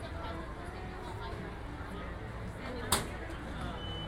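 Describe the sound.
A single sharp camera shutter click near the end, brief and fairly close, set against a steady hum of crowd chatter and murmuring voices.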